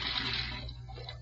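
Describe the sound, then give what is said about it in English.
Tap water runs steadily into a sink for about a minute, a continuous rushing hiss that eases slightly toward the end, with no voices. “I emptied the rest of the poison in the sink, and I let the water run for a minute.”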